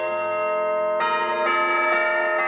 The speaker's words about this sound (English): I think it adds an element of hope to the campus. I think to have those bells return are a very obvious sign of the restoration that is going on here, to bring this place back to its former glory, or at least something close to what it once was.